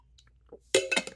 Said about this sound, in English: I'm going to grab a glass of water. Or drink some water.